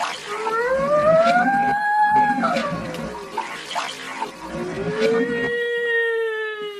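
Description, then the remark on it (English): Wailing alarm tones slowly rise and fall in pitch, overlapping one another as they sound steadily over a rushing, watery background noise. No one speaks. “I knew alarms were sounding.”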